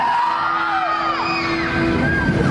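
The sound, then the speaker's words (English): A large concert crowd screams on cue as loud as it can, all at once, a dense sustained roar of shrieks and yells with high pitched voices sweeping up and down, filling the whole moment without a break. “Your job is to scream as loud as you can, okay?”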